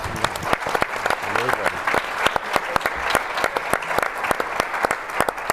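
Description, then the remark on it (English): An audience at an Institute for Governance and Sustainable Development event gives the organizers a quick round of applause, steady dense, crackling clapping that stays fairly even in loudness throughout, with a few murmured voices faintly underneath. “So let's give them a quick round of applause.”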